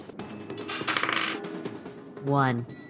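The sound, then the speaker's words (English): A quick, bright rattle of a six-sided die (1d6) tumbling and clicking across a hard tabletop for about half a second, followed shortly by a brief rising vocal sound. “And I need you guys to roll me a 1d6.”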